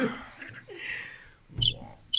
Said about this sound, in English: Is them crickets? Yeah. That's birds. Them shit sound like birds. Chirping.